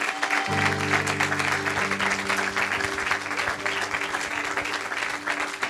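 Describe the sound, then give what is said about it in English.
An audience gives the Lord a 10-second hand clap, clapping steadily and densely, a sustained wash of many hands, while a held keyboard or organ chord sounds underneath. “For 10 seconds, give the Lord a hand clap.”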